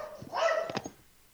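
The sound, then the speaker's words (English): A dog gives a short, slightly whiny bark followed by a couple of quick yips, one of several dogs, having picked a scuffle with another dog, with no one talking. “My peanut gallery. Your ghost-busting dog.”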